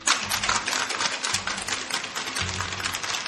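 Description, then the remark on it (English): A cocktail shaker holding ice and a half ounce of simple syrup is shaken hard and steadily, ice rattling in a fast, continuous rhythmic clatter for about three seconds, loud and without any talking. “And we're gonna shake this shit harder than you wanna shake that guy who ate a fucking bat.”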